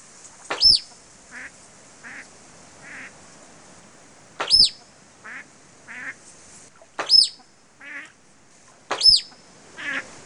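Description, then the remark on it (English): A female-reared musk duck imitates Pacific black duck quacks during a mate advertising display: four loud, sharp calls spaced a few seconds apart, with softer, nasal quacking notes in between and no talking. “He also had a recording of a female-reared musk duck imitating Pacific black duck quacks.”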